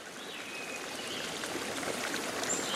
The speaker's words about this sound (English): A trickling stream seeping from the groundwater flow in the Catskill Mountain Range of New York State.